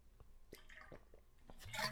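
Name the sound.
water being poured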